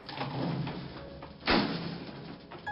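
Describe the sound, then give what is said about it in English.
Elevator doors slide open on floor 15 with a steady mechanical rumble and hiss, broken midway by a solid thump as they reach their stop, then a continuing low whir. Fairly loud, no voices. “Eventually, the elevator made its way up to floor 15, and the doors opened for her.”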